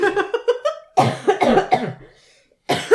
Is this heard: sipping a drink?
no